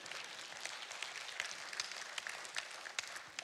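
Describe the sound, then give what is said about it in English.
A crowd applauds steadily, dense overlapping claps forming a bright, continuous patter that holds at an even level for a few seconds with no voices on top. “Yeah, clap, please.”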